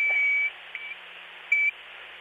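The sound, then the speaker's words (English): An avalanche beacon switched to transmit during a mountain climb, about an hour's hike above Advanced Base Camp: a long high-pitched electronic beep, a faint brief blip, then a shorter beep a second later, all over a steady background hiss. “gonna show me how to work an avalanche deeper. Let's transmit.”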